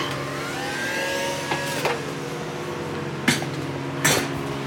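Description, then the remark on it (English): A server's dual power supply fans spin with a steady whirring hum and a high whine that shifts pitch early on, after the power is reconnected following a power outage, while a few sharp clicks and knocks punctuate the drone. No one speaks. “Both power supply fans are working.”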